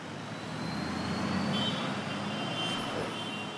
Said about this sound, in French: C'est probablement les boulevards les plus bruyants de Paris. Un flux ininterrompu de camions, de scooters, de motos qui viennent engorger Paris.